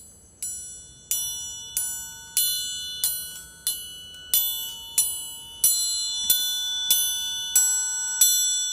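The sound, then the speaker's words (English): A triangle struck with scissors, about thirteen bright metallic strikes at a steady pace, each ringing high and shimmering before the next hit. No voices. “I have got lost my dinger for my triangle, but the scissors sound good.”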